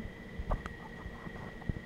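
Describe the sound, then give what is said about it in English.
A phone line tone: a faint steady electronic hum gives way to a louder tone at the very end, as a call connects and starts ringing. No one speaks. “Doyon's on the phone.”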